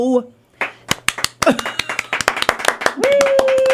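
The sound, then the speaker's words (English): A lone audience member claps a quick, uneven burst of a dozen or so sharp hand claps after a sung chicken parm song, with a brief voice just before and a sustained tone rising at the end. “Thank you to our audience member for that applause.”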